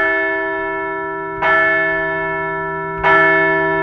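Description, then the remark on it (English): A large bell tolls twice, about one and a half seconds apart, each strike bright and loud with a long, shimmering hum that slowly fades between strokes. “No new losses to count today, so let's ring the bell.”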